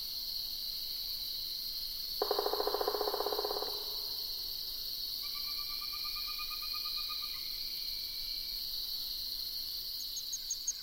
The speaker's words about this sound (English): Along the side of the road, I find a tinkling ground cricket, delivering its rapid series of bright tinkling notes from under fallen leaves. Quite a pretty song for a tiny cricket that's less than a half inch long.